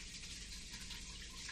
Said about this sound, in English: There's some water flowing down here. Dude, I hear it. It is the Niagara of waterfalls. Oh, it's like a drain or something upstairs. Oh. I thought it was my sump pump at first because it's kind of sloppy out there.